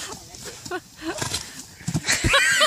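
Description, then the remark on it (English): A horse heard through a played video: a few heavy hoof thuds as it lands, followed by a short, strained whinny, with muffled voices and room noise in the background. “The horse is so dramatic.”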